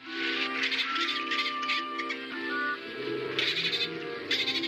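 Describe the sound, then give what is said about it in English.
Dolphin chatter from Flipper: a steady run of high, squeaky whistles and clicks, fairly loud, playing over a continuous bed of background music with no voices. “Researchers have found a bottlenose dolphin, and it has adopted and is nursing a pilot whale calf.”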